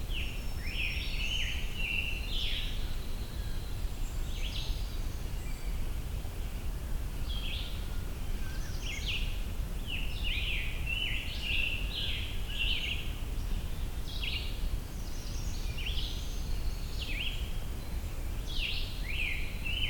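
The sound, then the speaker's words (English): A scarlet tanager sings a steady series of short, hoarse, burry phrases, repeating every second or so over a constant low rumble of wind or outdoor noise. “A Sore Sounding Song (Scarlet Tanager)”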